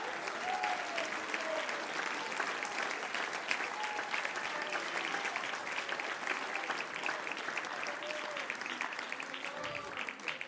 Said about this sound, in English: Oh, clap your hands to the Lord.